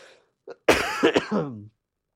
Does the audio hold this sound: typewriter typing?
no